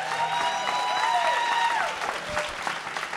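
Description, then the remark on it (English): An audience in Atlanta, at a Black History Month event, applauds a producer and director in a dense, continuous wash of clapping, with a few whistles or cheers rising above it before it starts to thin out. “And since it's Black History Month, give him another round of applause, please.”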